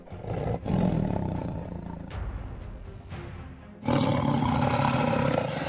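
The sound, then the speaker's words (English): A great tiger lets out a deep, rumbling growl that swells into a loud roar, easing slightly midway before surging back even stronger, with no voices present. “Reinforcements have arrived, growled Marvelous as his white frame glinted in the moonlight.”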